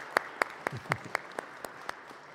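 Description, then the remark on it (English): Sparse, scattered applause for a 95th birthday: about nine sharp, crisp hand claps at an uneven, unhurried pace, sounding like only a few people clapping, over a quiet background hum. “So let's clap for Clem.”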